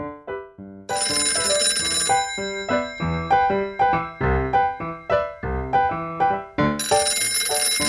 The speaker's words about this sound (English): Jane, the telephone's ringing. Jane, the telephone's ringing. Aren't you going to answer it?